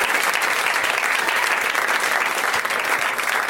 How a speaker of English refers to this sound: At this point, everyone applauds.